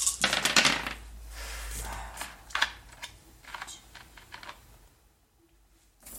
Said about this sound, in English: Whoops. I dropped my die.